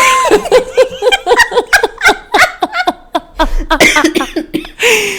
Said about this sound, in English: So in the darkness, girl, you better stop coughing. People gonna write us. You can't be coughing on the podcast, girl. People gonna write us a letter. My bad. You can't cough.